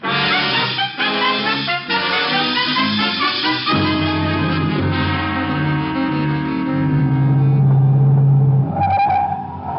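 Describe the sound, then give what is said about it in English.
A car engine roars steadily at high speed as the car is driven to overtake a train, its pitch rising and shifting as it accelerates, loud, with a brief tire squeal near the end. No one speaks. “Look, get your car. We'll try and overtake the train at the first stop.”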